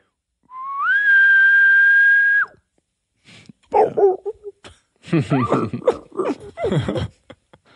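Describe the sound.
A person imitates a distant bull elk bugle, a single sustained high whistle that rises and holds for about two seconds, followed by laughter and chatter from several people.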